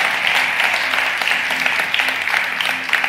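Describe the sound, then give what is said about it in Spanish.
A crowd claps steadily for God for about three seconds, a dense, continuous patter of many hands with no pauses, fairly loud throughout with a faint low hum underneath. “¿Cuántos quieren paz y cuántos le pueden dar un aplauso a Dios?”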